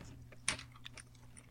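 A few quiet clicks of typing on a computer keyboard as someone types in a website address to order ice cream, one sharper tap followed by several softer, irregular keystrokes against a faint low background hum.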